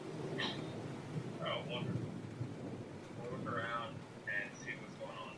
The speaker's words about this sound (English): You're face up into the sky as rain's just pouring down on you. Lightning flashes, thunder's crashing all around, and this is your birthday.